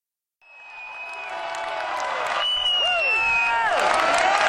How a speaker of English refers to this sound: That was the end of the set as everybody yelled for more. And this is what it sounded like.